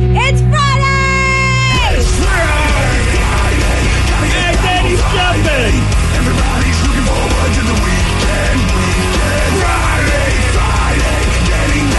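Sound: people screaming a name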